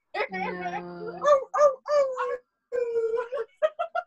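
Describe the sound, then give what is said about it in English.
A person howls like a dog, a drawn-out wavering cry followed by several shorter howling bursts and a few quick yips at the end, fairly loud. “Is this what you're gonna do at the protest? You're gonna howl?”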